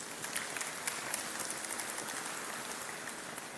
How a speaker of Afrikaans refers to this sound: Kan ons vir hulle 'n lekker hande klap gee?